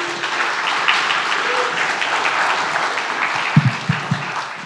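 A crowd claps steadily throughout for a guest preacher, the university chaplain at Baylor, a dense wash of many hands applauding, with a few louder low thumps toward the end and no one speaking.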